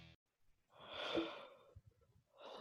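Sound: yawn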